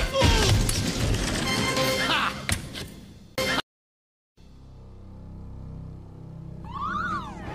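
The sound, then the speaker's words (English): A loud, chaotic crash and clatter gives way to a brief silence, then a low hum as an intruder alarm starts wailing in the ready room, its rising and falling electronic tone sweeping up near the end. “the intruder alarm's tripped in the ready room.”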